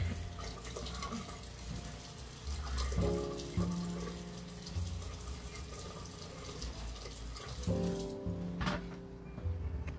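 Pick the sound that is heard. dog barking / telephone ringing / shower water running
shower water running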